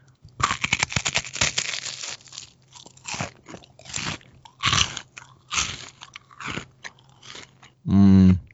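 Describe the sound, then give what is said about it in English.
A crisp chocolate wafer chewed slowly right at the microphone for an ASMR recording, a run of loud, dry bites and chews in uneven bursts, followed by a short buzzy tonal sound at the very end. “I need you to get your mouth closer to the microphone and chew slowly.”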